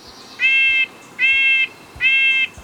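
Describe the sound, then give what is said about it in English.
Three loud, harsh calls from winter birds at a suet feeder ring out one after another at a steady pace, each lasting under half a second, with a faint rustling background and no talking. “There are pictures of those winter birds feasting on yummy suet cakes over at our website”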